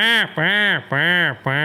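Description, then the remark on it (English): A duck call blown to mimic a hen mallard: four loud, drawn-out, reedy quacks in a steady rhythm, each bending slightly up and then down in pitch, with short gaps between them. “So there's so many different ways to blow a duck call”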